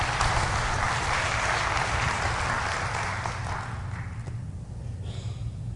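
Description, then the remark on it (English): A crowd claps steadily as a clap offering to the Lord, a dense, continuous wash of applause that holds strong for about three seconds, then gradually thins and fades out. “Let's give the Lord a great big clap offering.”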